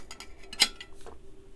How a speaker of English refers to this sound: Sorry, I need to have a drink of water.